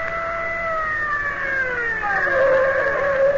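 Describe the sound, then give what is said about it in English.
A car slows to a stop, its whining tone sliding steadily downward in pitch over a few seconds, fairly loud, with no one talking. “I'll stop the car.”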